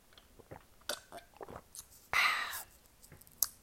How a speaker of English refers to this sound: Let me sip my tea on that.